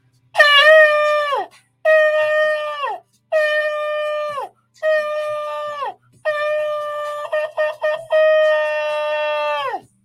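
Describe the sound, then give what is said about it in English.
Loud, brassy trumpet blasts sounded six times in a row as an alarm, each held steady for a second or two before sagging in pitch. The fifth breaks into quick stuttering bursts; no voices are heard. “Blow the trumpet and sound the alarm. So we sound.”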